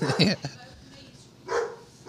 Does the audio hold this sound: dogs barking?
yes